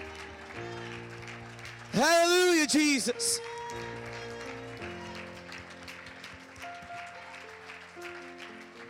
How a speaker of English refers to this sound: Can we clap our hands to heaven right now? Come on, clap your hands to heaven. It's okay to make noise in church.